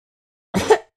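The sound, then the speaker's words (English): A voice imitates a tiny rat's cough: a short, soft double puff of breathy sound after a moment of silence, with another small burst starting just as it ends. “It's just a little tiny cough.”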